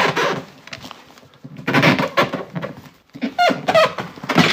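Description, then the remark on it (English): A voice imitates Godzilla's roar in several harsh, rasping bursts with brief pauses between, rising into a strained high squeal toward the end. No other talking. “So anyway, that probably sounds nothing like the Godzilla roar because...”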